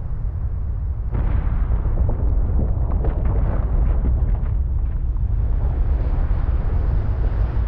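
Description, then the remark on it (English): A glacier calving event with a calving face 300 to 400 feet tall: a deep, sustained roar of ice collapsing into the ocean, pieces shooting up to 600 feet, with a heavy crashing burst about a second in and rumbling, cracking debris continuing loudly throughout. “The calving face is 300, sometimes 400 feet tall. Pieces of ice were shooting up out of the ocean 600 feet and then falling.”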